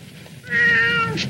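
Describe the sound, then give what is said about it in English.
A single drawn-out cat meow, clear and close, rising then gently falling over about a second, with a faint low rumble of background noise beneath and no talking. “But yeah, she takes the cat home, and it's lovely.”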